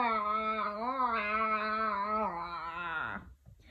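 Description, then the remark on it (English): Voices imitate zombie groaning in one long, sustained moan with a wavering pitch that slides downward at the end, fairly loud and steady before trailing off. “Groan the zombie gang. Can you be zombies?”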